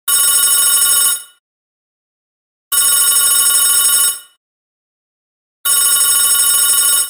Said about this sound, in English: As time drew on, there was no more information to be found. That was until the phone rang.